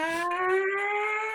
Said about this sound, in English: Yo, people went wild. People heard the purge siren playing in the streets, and anyone who knew what it was freaked out.